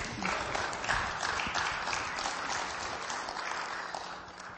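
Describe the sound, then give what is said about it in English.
A crowd claps steadily for several seconds, a dense, sustained patter of many hands at moderate loudness that tapers off slightly toward the end, with no one speaking. “Somebody clap now.”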